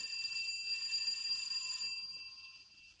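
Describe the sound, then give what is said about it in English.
A bright, metallic doorbell rings continuously for a few seconds at a door on Durant Street, its shimmering tone sustained and then slowly fading near the end; no voices are heard. “Well, looks deserted, all right. I'll try the bell.”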